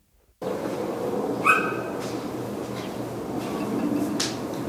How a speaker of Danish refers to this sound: Og så prøv at lytte til, hvad den her fugl siger der. Prøv at spole tilbage der. Nu. Den lyder helt vildt. Altså, det, og det kommer igen.